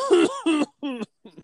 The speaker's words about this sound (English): Sorry for any COVID coughs. Like that one.